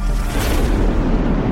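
A loud, sustained thunder boom: a deep, broad rumble that stays heavy and steady for over a second, with no voices over it.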